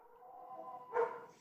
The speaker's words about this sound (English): Sorry, there's some dogs in the background. I don't know if you can hear them.